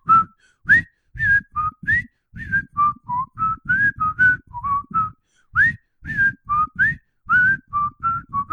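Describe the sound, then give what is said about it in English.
A person whistles a lively melodic tune, short bright notes hopping up and down in a steady rhythm with brief gaps, clear and fairly loud with no talking. “I kind of want to whistle it.”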